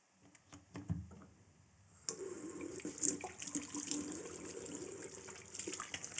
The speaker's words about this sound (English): Water, washing the feet. And what this sound must have represented, if you can imagine, you know, with the backdrop of who's going to be the greatest, the one who they were all following takes off his robe and he starts to pour some water